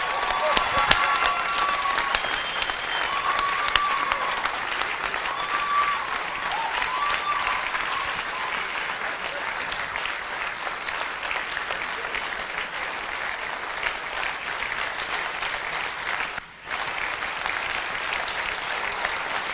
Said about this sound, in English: Clap your hands again.